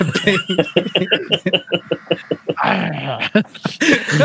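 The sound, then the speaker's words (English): A person imitating a wolf voices a string of short, rapid whimpers and yips, fairly loud, followed by a breathy, whining stretch and a few more yelps. “I mean, I'm a wolf, I don't know what, right? Well, be the wolf.”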